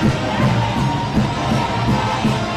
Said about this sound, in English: Cleveland fans screaming. The SROs are having to get involved here now.